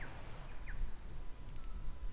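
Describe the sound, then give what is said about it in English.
A few brief, faint bird chirps sound early on, sparse, over a steady low outdoor rumble with no one talking. “You can hear the birds.”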